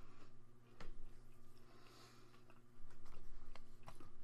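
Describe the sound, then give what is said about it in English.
Crunchy chewing of popcorn, with repeated crisp bites and mouth noises over a steady low hum, no talking. “And some popcorn.”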